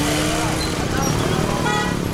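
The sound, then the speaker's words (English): Dense, steady roar of busy street traffic with engines and motorbikes, punctuated by short horn toots, and indistinct voices mixed into the constant city din. “Even if you haven't seen it for yourself, our correspondents on the show keep pointing out just how bad traffic can be in many Asian cities.”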